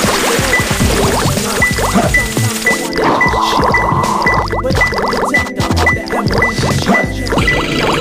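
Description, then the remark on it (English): Water gurgles and rushes steadily through a line as the water is reset off it, loud, with bubbling squishy textures and a faint high ping repeating at a regular pace throughout. “So I have to reset the water off the line.”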